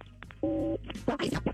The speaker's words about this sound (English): All right. Let's make the phone call on War of the Roses on KDWB. Find out what happens.